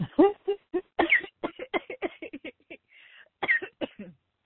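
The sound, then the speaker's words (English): A loud fit of sputtering coughs in quick, uneven bursts from someone who choked on water, broken by a brief raspy breath before a few final harsh coughs. “I'm like, you made me like cough on my water here.”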